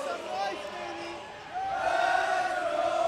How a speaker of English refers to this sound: The TABC Storm being commemorated with one of their chants.